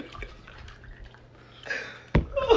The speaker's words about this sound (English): Pour the shot. Nah, yeah, we need the shot.